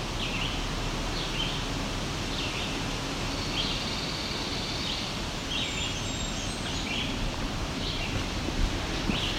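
A Blackburnian warbler sings faint, thin, very high notes, repeating every second or so, in a stand of what looks to be red pine along a pine loop trail. A steady rush of wind or rustling foliage partly masks the song.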